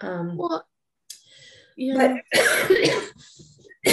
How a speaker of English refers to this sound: Go ahead while I cough.